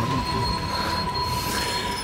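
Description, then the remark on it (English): Train wheels squeal on the rails as the train slows and lurches to a stop, a steady, high-pitched metallic whine with shrill overtones, held loud and unbroken over a low rumble of the moving cars, with no talking. “Gentlemen, I can see the train is lurching to a stop. We're slowing.”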